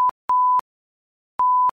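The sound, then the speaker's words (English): A door alarm at home beeps at one steady electronic pitch: a quick chirp, then two longer half-second beeps separated by a pause, clear with no voices. It is set to warn when a family member walks out. “But after the third walkout, we decided to set the beep-beep alarm.”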